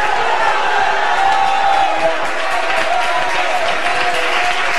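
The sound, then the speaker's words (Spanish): A church audience, during a preacher's sermon, erupts in loud, sustained shouting of hallelujah and cheering, many voices blending into a steady roar with scattered clapping that holds at full volume for about five seconds. “¡Alguien grita aleluya!”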